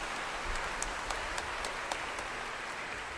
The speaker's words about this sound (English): But you know what? You can double your clapping because Father said, pwede po ba, I want to give this Holy Land trip to